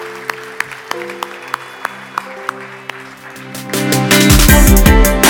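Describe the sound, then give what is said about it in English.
An audience at City Hill Church breaks into applause for Jesus, swelling into loud, dense clapping over sustained keyboard chords and a steady beat, with the clapping building through the final second or so. “Let's applaud Jesus.”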